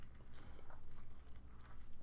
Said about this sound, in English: hard to quietly crunch ice. Sorry.